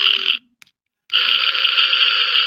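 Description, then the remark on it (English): A child's toy fart horn gives two loud, raspy blasts: a short burst, a brief pause, then a longer sustained buzzing honk. Nobody speaks. “is that your fart horn?”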